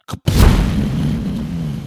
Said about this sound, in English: Drop the bomb. Ah, the bomb is the one thing I don't ever load up.